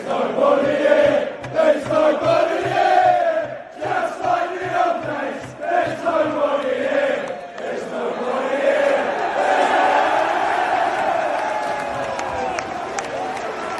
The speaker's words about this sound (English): Now, I love a mocking chant as much as the next person. The Arsenal away fans were in brilliant voice at Stamford Bridge by just pointing out that Chelsea had quite a lot of empty seats.